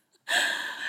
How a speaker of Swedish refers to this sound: Om ni undrar vem som snarkar så är det inte Luna. Det är alltså våran Frenchie här